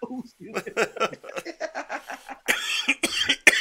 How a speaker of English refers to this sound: Maybe I'll help you finally get over this COVID garbage I got. Cough all that shit up.